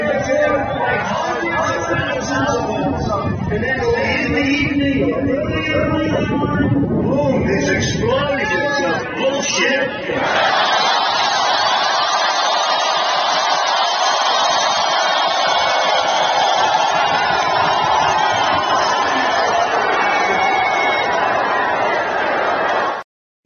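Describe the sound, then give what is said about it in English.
A huge crowd on January 6th, heard in a video, clamors loudly, a dense babble of many shouting voices that gives way midway to a steady, unbroken roar, holding at full volume until it cuts off abruptly. “Because January 6th, I hadn't seen this video of the size of the crowd of January 6th.”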